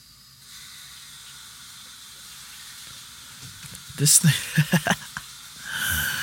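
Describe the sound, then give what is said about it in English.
A tap runs with a steady, hissing rush of water, turned on by a man while he urinates, broken midway by several short voice-like bursts, then the flow swells louder near the end. “This nigga turns the water on.”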